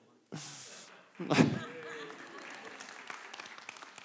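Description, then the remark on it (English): An audience breaks into applause for a person who came up to the front for about 30 seconds, starting abruptly and swelling to a louder burst before settling into steady, crackling clapping that carries on to the end, with faint voices mixed in. “You come up here for 30 seconds. I spent like 15 hours on this message. You get applause.”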